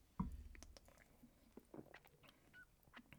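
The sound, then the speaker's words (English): Someone opens a beer and takes a sip: a soft thump, then quiet wet slurps and small mouth clicks scattered over a few seconds, with no talking. “So let's open a beer.”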